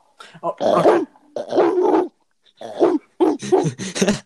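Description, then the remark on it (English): A person imitates a dog, letting out a series of loud, throaty barks and growls in several bursts separated by short pauses. “What is something that you can do very well? A dog.”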